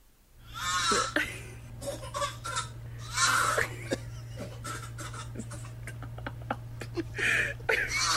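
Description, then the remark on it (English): A toddler makes several loud, strained retching and gagging noises in spaced bursts, pretending to have morning sickness like its pregnant mother, with a steady low hum in the background. “While we're on the subject of being sick, a pregnant mom shared a video of her toddler on social media pretending to have morning sickness, just like mom.”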